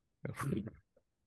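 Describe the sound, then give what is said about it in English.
A voice imitates a sputtering fart: one buzzy, wet blurt lasting about half a second, then a tiny trailing pop before silence. “Yeah, it wasn't even a good fart. It was like a sputtering one, you know?”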